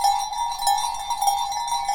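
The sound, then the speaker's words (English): A heavy pack horse bell collar with seven metal bells, of the kind worn by the leading pony of a pack train, jangles continuously as it is shaken, several bright overlapping tones ringing and shimmering together in a steady, slightly uneven clatter. “For this is a pack horse bell collar with 7 bells.”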